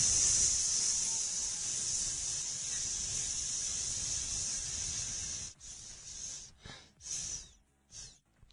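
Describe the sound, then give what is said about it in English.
A dry, hissing rattlesnake buzz from two rattlesnakes mating, heard in a video, runs steadily for several seconds, then breaks into a few short, choppy bursts before fading. Moderately loud, with no voices. “I looked it up, Chris, and it's two snakes doing it”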